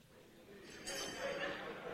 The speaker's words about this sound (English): Next, when you ring the bell, you have 3 seconds within which to start giving your answer, or you hear this bell.